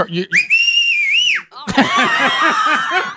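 A loud, piercing human whistle holds one high, steady note for about a second, close and shrill. A rhythmic, warbling voice follows.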